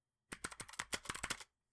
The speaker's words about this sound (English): I love your stupidly loud keyboard.